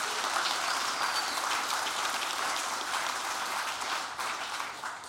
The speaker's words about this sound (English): And we don't clap for us, we clap for the freedom that's available in Jesus Christ.